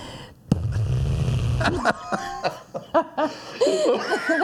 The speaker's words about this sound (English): So she just stuck her tongue out of her mouth between her lips and made farting noises.